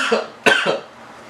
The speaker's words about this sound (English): Excuse me. Sorry, my cough is still here, just very barely.